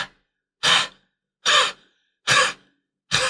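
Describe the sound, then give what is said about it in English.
A person loudly imitates rhythmic breathing from a musical dance number: four sharp, breathy huffs at an even pace, roughly one per second, each separated by silence. “It's like breathing. Rhythmic breathing.”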